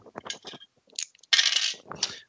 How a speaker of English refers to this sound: Do I get to roll my Xeno thing before you tell me what I recognize? No, just roll your three dice and tell me what you get.